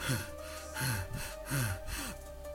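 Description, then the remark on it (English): Someone takes three short, breathy inhales at an even pace, then holds their breath. The sound is fairly quiet, with no talking. “So I'm taking three breaths and I'm stopping.”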